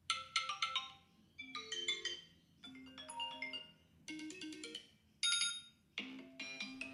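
A bright, melodic phone alarm ringtone plays alone, looping short bursts of chime-like synth notes in a bouncy rhythm over a soft low hum, repeating about six times.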